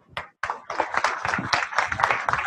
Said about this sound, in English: So can we please give a round of applause for our guest speaker